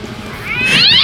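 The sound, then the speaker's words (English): A single cat meow, rising into a bright, strained tone in the second half and ending abruptly. Loud, with no talking over it. “Meows sound good.”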